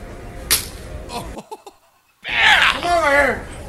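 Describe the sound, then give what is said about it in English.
A single sharp, loud open-hand slap cracks out early as a bouncer slaps a kid's face amid a noisy, crowded background, followed by a brief hush and then loud, excited voices shouting. “And the slap you hear at the end is the bouncer slapping this kid's face.”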